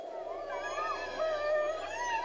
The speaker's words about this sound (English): Whoa, what was... probably just a door or a window shutter in this old house behind us, right? Moving in the breeze.